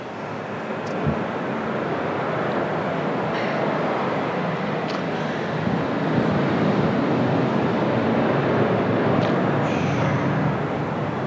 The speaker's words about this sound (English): You might not be able to hear if you're on the live stream. Loud airplane.